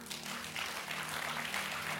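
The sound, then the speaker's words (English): An audience claps together at the preacher's invitation during a sermon, a dense, steady patter that fills both seconds at an even level, with a faint low hum beneath and no voices. “You can clap.”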